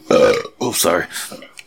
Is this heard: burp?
yes